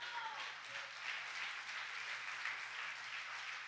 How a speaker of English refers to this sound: I got three people clapping.